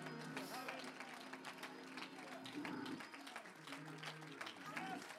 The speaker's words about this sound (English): Oh, come on. Somebody clap your hands.